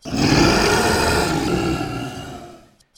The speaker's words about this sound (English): Pale gray, scaleless flesh, rent and torn through the attacks of many different beasts and creatures, it still stands strong, sightless eyes gazing into the setting sun as it roars out a challenge to the oncoming night.